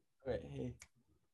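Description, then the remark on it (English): A short burst of voice is followed by a single sharp, crisp finger snap, then brief low murmuring. “Don't click at me.”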